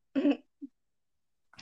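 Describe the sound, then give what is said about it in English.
A person coughs and clears their throat in the morning: a raspy burst, a short low grunt, then another brief cough after a pause. Fairly quiet, with no talking. “I keep coughing.”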